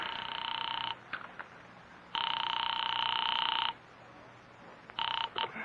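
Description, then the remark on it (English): A telephone line rings through the earpiece as an operator's call rings at North Tacoloma 3, in repeated buzzing bursts, each lasting around a second, separated by short silent gaps. The tone is steady and fairly loud, with no one talking. “I am actually ringing at North Tacoloma 3.”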